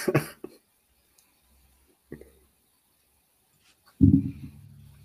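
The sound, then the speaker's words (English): Dogs bark in a few short, sharp bursts with quiet gaps between, ending in a louder, longer round of barking. “Oh, woof, woof. Oh. Hello? Oh, okay. I viewed him myself because my dogs are...”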